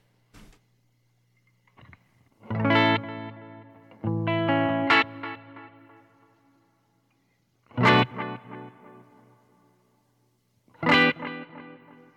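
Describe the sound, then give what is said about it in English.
An electric guitar played through a delay and reverb pedal strums a few chords, each ringing out into long echoing repeats that grow longer, the delay louder than the reverb, with a washy reverb tail fading before the next chord; no one speaks. “All of a sudden, it's like I'm getting more repeats, and the delay is seems hotter than the reverb, whereas a minute ago they were more even.”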